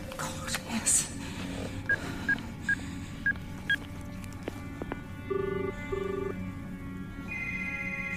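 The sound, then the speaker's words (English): A phone number is dialed to call a woman: a quick run of short, evenly spaced electronic keypad tones, followed by a steadier, longer tone over a low background hum. “Wait, call her.”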